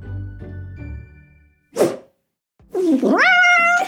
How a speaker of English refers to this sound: Oh, hello! A fellow cat! I'm Tuesday!